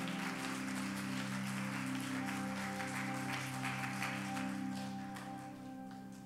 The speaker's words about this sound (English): Won't you clap your hands as you're being seated?